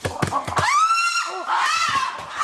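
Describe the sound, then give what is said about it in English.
A loud, high, wavering chimpanzee shriek rises and holds, framed by sharp percussive thumps before it and a series of dull, hollow drumming beats afterward as chimpanzees drum on huge exposed tree roots to communicate. “That's a lot of shrieking and screeching. But did you hear the drumming?”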